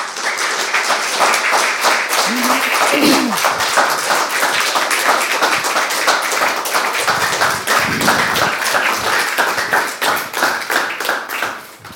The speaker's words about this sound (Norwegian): Gi dem begge en varm applaus.